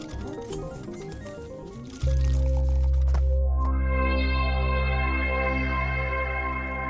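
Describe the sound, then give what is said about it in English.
Shower water runs in a large royal shower, hissing and splashing for about two seconds, then gives way to a loud, steady, low droning tone that fills the rest. No one speaks. “I've never been in a royal shower before.”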